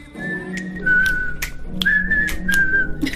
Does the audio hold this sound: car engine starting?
no